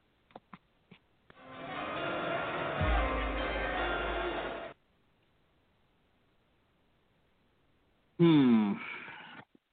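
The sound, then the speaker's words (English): A few sharp clicks, then a loud, dense burst of draft countdown music for about three seconds, with a deep bass tone joining halfway, cut off abruptly into silence before a brief vocal sweep. “JP, hit that music again because Inferno is now on the clock.”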